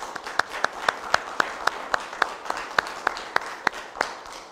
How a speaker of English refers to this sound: I want us to give a wonderful round of applause for our musicians today.